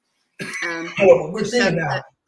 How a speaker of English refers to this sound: I don't have COVID. I'm coughing.